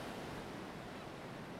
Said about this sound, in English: or sometimes I'd just sit and watch the water. The waves were so captivating.